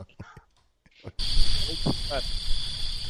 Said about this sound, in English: It's a flood of crickets.